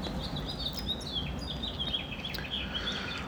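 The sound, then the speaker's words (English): A house finch sings outdoors in nature, its quick warbling chirps repeating throughout over a steady low outdoor rumble, fairly faint, with no one talking. “So the house finch that thankfully is contributing to the soundtrack of this, she's bringing up a great point, which is that nature is a really big deal to me, and I hope to record most of these outdoors in nature.”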